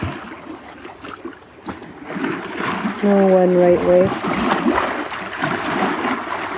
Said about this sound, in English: The way the water's moving right now.